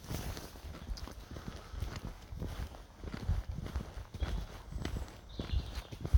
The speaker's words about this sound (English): Birds are singing. Feet are stomping. On the paths.